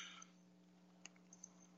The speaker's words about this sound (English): Hey, you got to either slow down with that typing. Well, the problem is it's distracting, man. What are you typing? My apologies.